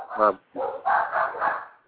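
A dog barks several times in quick succession, loud, with short gaps between the harsh, tonal yaps.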